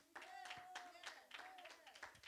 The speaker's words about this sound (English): Amen. Come on, give the Lord a round of applause for that.